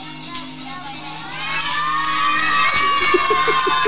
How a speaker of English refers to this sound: They're clapping. You hear them? That is, that's the response to a bubble.